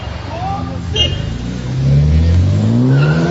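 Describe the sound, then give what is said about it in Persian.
A tuned street-racing car's engine, upgraded with sport tuning parts for Iranian street racing, revs up loud, its pitch climbing steadily as it accelerates, with a brief high screech of the tires early on. “مسلماً نه، شرط بندی هم میکنه تو مسابقه، باید حتما اینو انجام بده، چون خرجشون رو باید در بیاد برای موتورشون رو، بسلی که توی قطعات ماشینشون برای اسپورت کردن و تیونینگ کردنش استفاده میکنن.”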